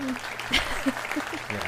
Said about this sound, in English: Clap, clap, clap, clap, right? Clap, clap.